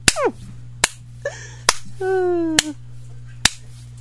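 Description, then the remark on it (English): Five sharp, crisp hand slaps spank a woman's bottom on her birthday at a steady pace, just under a second apart, with brief high-pitched vocal squeals and a faint steady hum between them. “Give her a few more. This is her birthday.”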